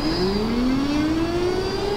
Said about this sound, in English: That's our Pervnado siren.